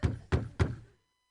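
Three heavy, evenly spaced bangs on a door, loud, each with a deep thudding body and a short ringing decay, then silence.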